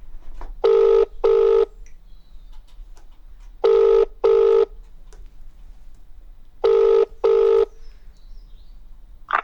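A phone's ringback tone heard down the line: three paired double rings, evenly spaced with quiet pauses between, clear and steady over faint background hiss. No one speaks.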